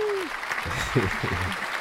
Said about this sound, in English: I'll give you a little round of applause, too. Where's my round of applause stuff at? There we go, right there.